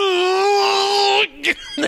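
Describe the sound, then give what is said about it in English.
A single voice lets out a loud, sustained wailing cry for over a second, then breaks off into a couple of short, rough grunting bursts, like someone theatrically imitating anguished screaming, mimicking Harvey Keitel in Bad Lieutenant. “start grunting and screaming like I'm Harvey Keitel going nothing.”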